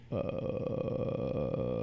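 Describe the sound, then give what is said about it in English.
A singer's lowest note: a very low, gravelly sung bass note held steadily for nearly two seconds, rough and croaky enough to sound like a drawn-out burp, fairly loud. “Why does it sound like that? Like a burp.”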